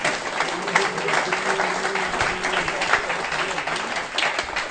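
A room full of people applauding steadily for a prize winner being congratulated, a dense wash of clapping that stays loud throughout, with faint voices and murmurs mixed underneath.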